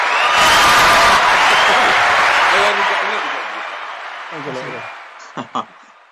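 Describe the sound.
A loud burst of crowd applause roars for about two and a half seconds, then fades under a few voices, ending with a couple of sharp claps.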